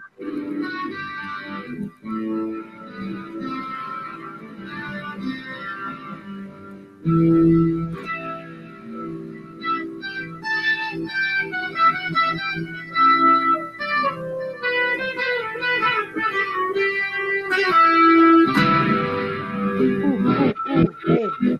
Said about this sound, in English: But I'm in the distortion section now, I think, making a really sharp sounding. Distortion here. Yeah, there's a nice one. That's a nice one, yeah.